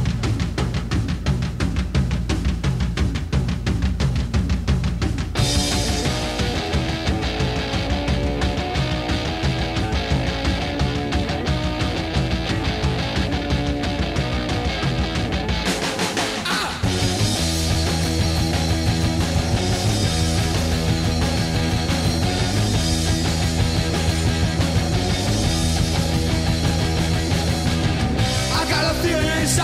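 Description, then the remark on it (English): A loud, dense 1976 punk rock recording plays throughout: distorted guitars and driving drums, with a brief drum roll break about halfway before the full band crashes back in. “This sounds like punk rock to me and still does to this day.”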